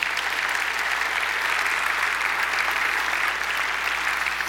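Steady, dense applause from an audience, many hands clapping at once in a continuous wash of sound that holds an even loudness throughout, with no voices standing out.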